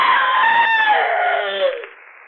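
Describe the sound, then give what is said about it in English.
A woman's shrill, sustained scream rings out loud and close for about two seconds, its pitch sliding downward before it breaks off abruptly. “Well, friend, as we say here in the Inner Sanctum, it's all over but the screaming.”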